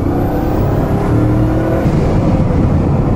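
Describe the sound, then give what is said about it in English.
A powerful 1614-horsepower car engine roars at 6,960 revs, a dense, steady mechanical snarl with a harmonic whine rising slightly. It is loud and continuous for a few seconds, with no voices. “1614 horsepower. That's 6,960 revs.”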